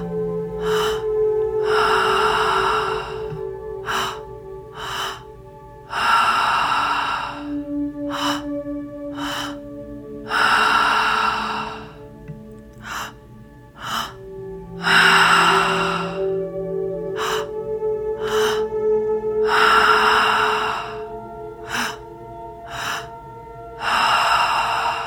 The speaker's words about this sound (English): This entire breath pattern is all through the mouth. So when you're ready, go ahead and begin. In through the belly, in through the chest, and out through the mouth.